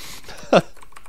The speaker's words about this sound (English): Ooh, somebody's loudly typing to demonstrate their new keyboard.